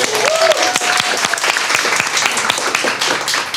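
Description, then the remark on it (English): A crowd breaks into steady applause for the speaker's partner, many hands clapping in a dense, continuous patter at a fairly loud level, with a faint whistle-like tone rising briefly near the start. “We give her a little round of applause.”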